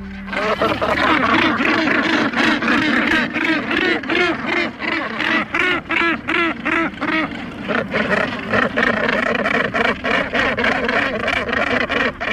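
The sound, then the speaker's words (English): A dense, continuous din of harsh, raspy seabird calls from a crowded Northern gannet breeding colony on rocky island cliffs off the coast of Canada, countless overlapping grating cries layered together at a steady loud level with no pauses. “Here's what they sound like in their breeding colonies on rocky island cliffs off the coast of Canada.”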